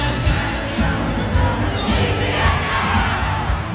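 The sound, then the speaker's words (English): LSU fans at Louisiana State University's Tiger Stadium roar and shout continuously over a song that is their unofficial anthem, a dense, loud wall of voices that stays steady and energetic throughout, with no distinct individual speech. “The song is an unofficial anthem for LSU fans at football games, and obviously they're nuts about it.”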